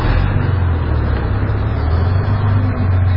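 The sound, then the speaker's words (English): A Midland Red double-decker bus rumbles past, its heavy engine producing a loud, steady low drone throughout, with no voices. “And here comes a Midland Red double-decker bus.”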